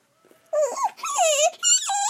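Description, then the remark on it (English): A dog named Lucky whines and vocalizes at a big pool in three drawn-out, wavering bursts with short breaks between, high and nasal with rising and falling pitch, and no one talking over it. “It's okay, Lucky. I'll ask her if she has a suit for a dog.”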